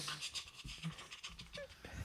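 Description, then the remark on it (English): A beagle pants quickly and steadily, short breathy huffs repeating in an even rhythm, soft, with no voices over it. “Now what's going to happen to my dog?”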